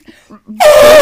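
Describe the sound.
A person imitates an elephant trumpet: a few soft, short vocal sounds, then a sudden loud, brassy blare held steady on one pitch for about half a second.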